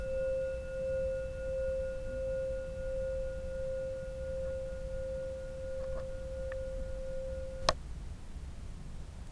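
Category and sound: signal or alarm, meditation bell ringing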